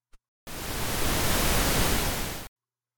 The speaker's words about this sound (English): Yeah, pink noise, it's great.